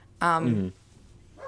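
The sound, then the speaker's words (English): A single loud dog bark rings out for about half a second, followed by quiet and the faint start of another sound at the very end. “I swear to God, I'm not going to kill the dog because the dog doesn't know any better.”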